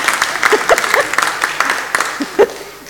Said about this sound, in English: Four? That is amazing. That deserves a clap.